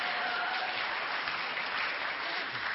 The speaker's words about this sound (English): And it's tough because, don't clap for that.